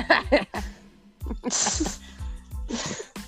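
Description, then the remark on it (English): A person coughs in a rapid series of harsh, explosive bursts, several short hacks followed by longer raspy, wheezy coughs, fairly loud with no talking. “Stop coughing!”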